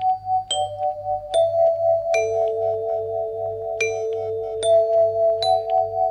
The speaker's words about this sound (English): That is the traditional chime played by clocks and bell towers around the world. It's called the Westminster Quarters, and it was named after the bell tower at Westminster Palace.